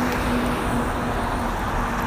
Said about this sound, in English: Heavy trucks zipping by.